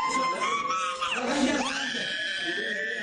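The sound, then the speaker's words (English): A child screams and wails continuously in a hospital in Yemen, a loud, high-pitched cry that rises and falls in long, strained bursts, over a faint murmur of background noise. “In the hospital, one child begins to scream.”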